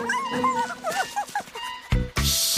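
A dog, Basher, whimpers alone in a backyard fort in a run of high, wavering whines that slide up and down in pitch, ending with a sharper, louder yelp and a burst of hissy noise.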